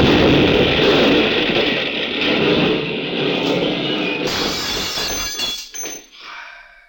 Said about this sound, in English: I got out of the car, but the explosion knocked me flat.